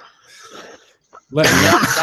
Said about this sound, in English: I'm less happy with … coughing into his microphone.